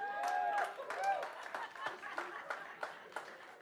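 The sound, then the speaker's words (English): An audience claps steadily, many hands making a dense, crackling patter with sharper individual claps standing out, plus a brief whistle-like tone and faint crowd voices underneath. “Make some noise if so, you're sitting next to somebody who's always sincerely wrong, but they ain't clapping. Clap for them.”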